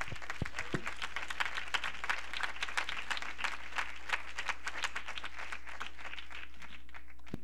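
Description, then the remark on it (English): An audience claps hands together steadily for several seconds, a dense patter of many overlapping claps, with no one talking over it. “Let's clap our hands in Jesus' name.”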